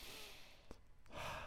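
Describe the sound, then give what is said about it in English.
Soft breathing during a deep-breathing exercise, in through the nose and out through the mouth: a long airy breath fades out, a brief pause with a couple of faint clicks follows, then another hushed breath swells in. No one speaks. “Breathe in through your nose, out through your mouth.”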